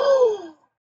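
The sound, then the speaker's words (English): A single loud, breathy gasp of shock, voiced and sliding downward in pitch, lasting about half a second before cutting to silence. “Cue the shocked gasps.”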